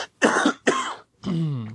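coughing

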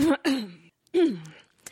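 cough

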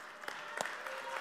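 audience applause

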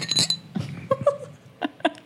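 glasses clinking

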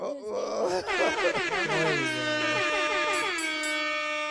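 air horn sound effect

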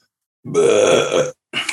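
burp

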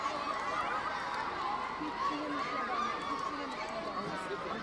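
crowd cheering

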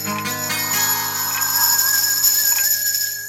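grandfather clock chiming

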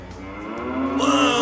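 cow mooing

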